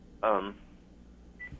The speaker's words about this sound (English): Hello? Yeah, we're losing the signal a little bit. Are you on a cell phone?